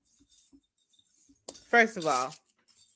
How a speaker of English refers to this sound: I just dropped all my keys.